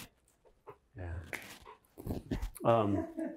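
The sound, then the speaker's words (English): A puppy named Jupiter whimpers and lets out a few short, high yelping barks in uneven bursts, with whiny, drawn-out cries between them. “Okay, so we just got like momentarily interrupted by our puppy here.”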